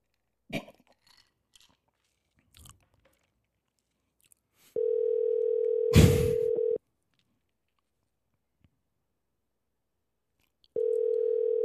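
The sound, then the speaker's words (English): Ringback tone of an outgoing phone call: a steady electronic purr sounds for about two seconds, pauses, then begins again, with some handling clicks and a brief crunchy rustle, and no one answers. “pick the phone up.”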